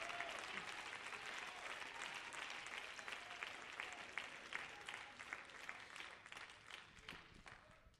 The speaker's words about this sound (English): Could you clap your hands to Jesus and give him praise?